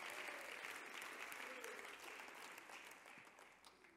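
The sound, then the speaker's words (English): A church audience applauds steadily for about four seconds as a hand clap of praise to the Lord, a dense wash of many hands clapping in a reverberant room, slowly tapering off toward the end. “Would you give the Lord one more hand clap of praise as you're seated today?”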